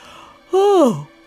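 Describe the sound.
A single close, fairly loud yawn: a voiced, drawn-out breath that swells briefly, then slides downward in pitch as it trails off against a quiet background.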